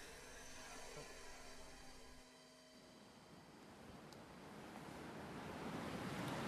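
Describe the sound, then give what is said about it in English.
Steady rushing water of the Gort River (officially the Canahona) in Ireland fills the scene, a broad wash of flowing river noise that swells louder toward the end, with a faint low hum in the background early on. “Excuse my ignorance now, but what river is this? This is the Gort River.”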